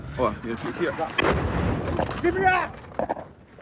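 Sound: artillery shelling explosions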